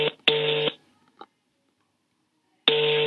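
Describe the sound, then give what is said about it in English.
Phone dialing tones for an outgoing call: a steady electronic tone sounds briefly, stops, and after a long silence with a faint click, the same tone begins again. No one speaks. “So I'm just going to call her real quick and we'll get her thoughts.”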